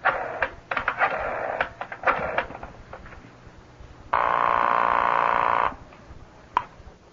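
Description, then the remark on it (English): A telephone handset is lifted with clattering clicks and a quick series of dialing clicks, followed by a steady, loud tone lasting over a second, then a final click. No one speaks. “You just pick up the phone and there you rip right through.”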